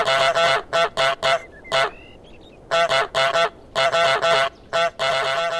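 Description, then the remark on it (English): A video game goose honks over and over in quick, loud bursts as the single honk button is mashed, pausing briefly midway before resuming the rapid string of honks. No one speaks. “It's just a single button press, but you can also just mash it as much as you like, and the goose will just keep on honking, which is so much fun.”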